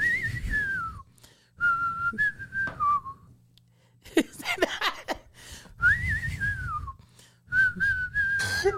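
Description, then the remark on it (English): A person whistles a twangy, Western-style tune in long sustained phrases, clear, with a brief burst of clattery noise in the middle before the whistled melody resumes. “That's not the sound they make, but I know what you're doing. You're just whistling.”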